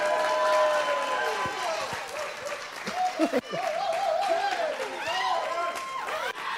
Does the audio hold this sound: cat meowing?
no